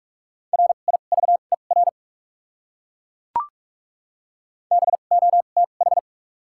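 Rapid Morse code tones at about 45 words per minute with double character spacing, sending common English words, a steady mid-pitched beep keyed in quick dots and dashes, two bursts split by a sharp click with silence between.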